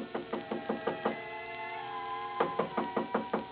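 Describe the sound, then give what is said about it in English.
Rapid knuckle knocks on a wooden hotel room door, a quick burst of about six, a short pause, then another insistent run of raps. Fairly loud, with no voices. “I had just put down the phone when someone knocked on the door.”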